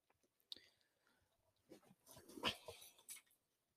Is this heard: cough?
no